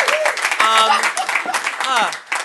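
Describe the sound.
An audience claps in a steady wash of applause, with voices cheering and whooping over it, some rising and falling in pitch, before the clapping thins out at the end.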